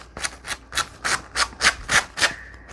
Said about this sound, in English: It really is easy with the sanding method here because it just takes it right to the edge.